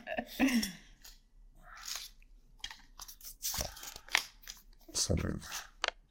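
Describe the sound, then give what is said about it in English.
Crisp rustling and crinkling as a piece of paper is picked up and handled, in short bursts of crackle with brief pauses between them. “Go on, take another piece of paper.”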